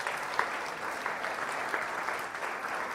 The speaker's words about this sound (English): All right, let's hear a round of applause for our fathers and for our kids.